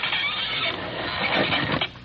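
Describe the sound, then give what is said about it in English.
Watson opens a wooden trap door with a ring in the floor, under a cut-out section of carpet: it creaks and scrapes open in one steady, grinding movement lasting about two seconds, fairly loud, with a rough ratcheting texture and no voices. “Open the trap door.”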